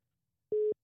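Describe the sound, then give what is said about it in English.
A single call-waiting beep on a phone line as someone else calls: one short, steady, mid-pitched tone lasting a fraction of a second, clear and alone with silence around it. “I don't know if you could hear that, but someone else was calling me, so there was like a beeping sound.”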